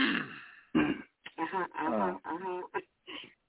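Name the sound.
throat clearing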